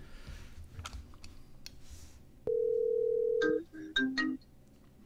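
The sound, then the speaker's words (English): A few soft clicks, then a phone call's ringing tone: one long, steady electronic tone followed by a couple of short, higher beeps, clear, with no one talking. “Why is it still ringing?”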